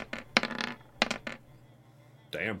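Dice clatter across a hard table in two quick bursts of sharp clicks and rattles, followed by a brief voice at the end.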